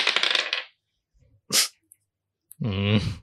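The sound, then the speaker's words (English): Dice are rolled to decide who goes first, clattering and rattling across a hard surface, followed by a couple of sharp clicks as they settle, then a short voiced exclamation closes it out. “I just rolled mine. 14. You can roll yours. Natural 1.”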